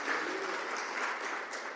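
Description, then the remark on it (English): A crowd claps steadily for Jesus during a talk about the Bible, a dense, even wash of many hands with no single beats standing out, sustained throughout without any voices on top. “Can you clap for Jesus?”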